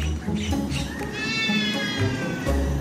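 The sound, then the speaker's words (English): A trumpeter hornbill gives a drawn-out, wailing call mimicking a cat's meow, clear over a steady low background rumble. “However, the trumpeter hornbill has a rather convincing cat.”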